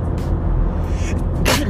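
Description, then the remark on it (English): A single loud, sharp human sneeze bursts out near the end after a brief breathy intake, set against a steady low engine-like rumble in the background. “That was a great sneeze though.”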